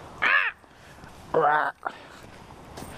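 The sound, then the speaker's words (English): A person's voice imitates a crow with two loud, harsh caws, spaced about a second apart, followed by quiet outdoor background. “That was a good crow.”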